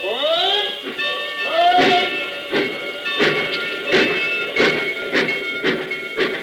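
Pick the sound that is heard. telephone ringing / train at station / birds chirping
train at station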